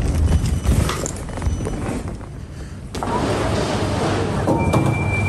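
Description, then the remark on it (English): Elevator doors slide open at floor zero with a soft clunk and a rising mechanical whoosh, steady, over a busy background hum. A faint thin tone sounds near the end. “Piano zero, floor zero, la porta si apre, door opening.”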